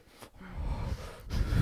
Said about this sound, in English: I'm trying to breathe through my diaphragm now. I'm like, I know. So I'm just some diaphragm breathing.